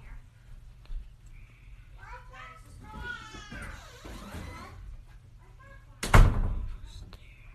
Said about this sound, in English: Okay, can you close the two bathroom doors?